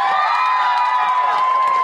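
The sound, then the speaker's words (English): An audience cheers and applauds loudly, a steady roar of high whoops and shouts over clapping that holds without a break for about two seconds. “Big round of applause for Snape.”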